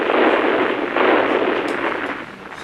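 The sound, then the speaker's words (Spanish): A close, loud series of explosions merging into a dense, continuous rumbling roar with crackling bursts throughout, fading slightly toward the end. No one speaks. “No sé si escuchaste eso, Carlos, pero una serie de explosiones se podía oír a nuestra proximidad.”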